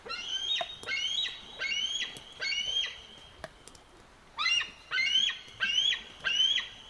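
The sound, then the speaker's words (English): Bald eagle calls: two bursts of high, thin squeaking chirps, each a quick series of about four rising notes, separated by a short pause with no one speaking. “But it's more majestic sounding than the sounds bald eagles make, which are more like a series of short squeaks, like this.”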